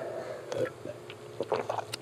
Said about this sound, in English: I got to take some water because it is dramatic.